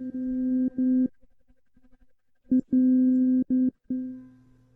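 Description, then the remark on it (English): A struck tuning fork tuned to C rings out a steady, pure mid-pitched tone that keeps cutting in and out in choppy bursts, with a brief silent gap midway, heard alone without any talking. “What I'll do is I'll play one fork after the other first to introduce those to the nervous system, then the two together.”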